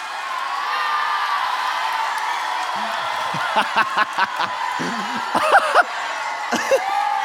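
An audience of boys cheering: a steady crowd roar, then scattered high whoops and shouted yells burst out in the second half, rising and falling in short, excited bursts.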